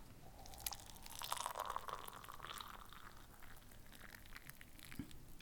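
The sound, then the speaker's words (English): Hot tea pours into a cup in front of a microphone in a steady, gurgling stream, a soft splashy hiss with a faint pitch that rises slightly as the cup fills, ending with a small clink near the end. “whilst I appreciate that you are pouring that in front of the microphone to get the great noise”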